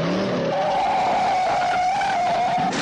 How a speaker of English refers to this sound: Car chase time. Car chase music, whatever.